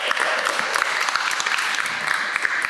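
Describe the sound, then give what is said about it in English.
A crowd at St. Thomas's church breaks into sustained applause for a church warden, a dense wash of clapping hands with scattered sharper claps standing out, steady and fairly loud throughout with no voices. “Let's give him a round of applause for...”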